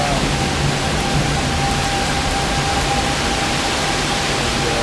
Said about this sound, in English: It's not raining on me because I'm under the porch. But it's raining so hard that there's like a mist in the air. So I'm just, it's like standing near a waterfall. You just get that mist because it's just raining so darn hard.